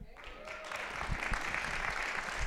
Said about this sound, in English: I love spontaneous applause without any prodding. I think that's wonderful.